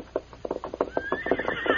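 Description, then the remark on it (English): A horse's hooves clip-clop on a trail in a quick, steady rhythm, and partway through the horse lets out a high, drawn-out whinny over the hoofbeats. “We'll backtrack the horse's trail and try to find the owner.”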